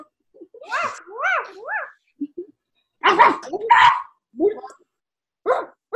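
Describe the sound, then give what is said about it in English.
A child imitates a barking dog, letting out a string of about eight high, yippy arfs and woofs in uneven bursts, fairly loud, with short pauses between. “Yes, I'm a dog.”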